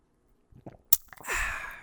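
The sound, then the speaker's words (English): A few soft clicks and a sharp little clink, then a breathy, airy slurp as someone sips hot tea in the morning, with no talking. “So let me take a sip of my tea in honor of those ladies.”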